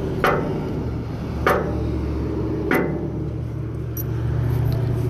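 Three heavy, evenly spaced knocks from the knocker of a heavy oak door, each a sharp thud with a brief ringing edge, over a steady low background hum; no one speaks.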